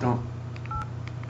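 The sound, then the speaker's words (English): A cell phone keypad beeps as a number is dialed, several short touch-tone notes in quick succession, clear over a low background hum and a brief voice at the start. “She says to call her. We should call her right now.”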